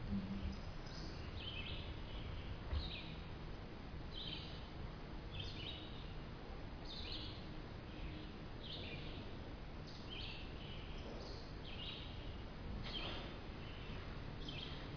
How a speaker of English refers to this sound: If you need, keep the sound of the birds present, just to be with, to create that container to be with.